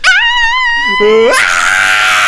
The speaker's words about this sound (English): I was doing the punchline scream.